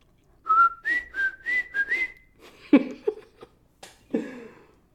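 A person whistles a brief, bright tune of about six quick notes, up close and clear, followed by a few breathy chuckles and soft vocal sounds.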